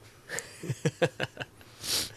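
A run of short, wet sniffles in quick succession, about half a dozen quick snuffs, followed by one longer, breathier sniff at the end. Moderately loud, with no talking.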